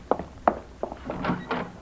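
Three firm knocks on a wooden door, evenly spaced, followed by some softer shuffling sounds.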